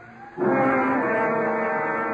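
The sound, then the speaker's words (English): An ambulance siren wails at night by a river, in a loud, sustained, harmonically rich tone that swells in abruptly after a quiet moment and holds steady for nearly two seconds, with no one talking. “Then to the whispered, muffled sounds of the night in the river is added the furied lament of the siren and the attendance of the dead and the dying in there.”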